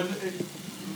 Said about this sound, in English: Listen to this sizzling dish. Is that pilaf? Did you order pilaf? I ordered vegetable rice. Oh, that's the pilaf rice then.